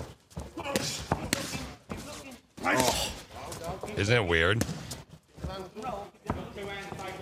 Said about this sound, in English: There was recently a boxing match, and it was without a crowd. So this is actually, and this is no joke. This is real. This is what boxing sounds like. Like with Mike Tyson's fight, this is what it might sound like.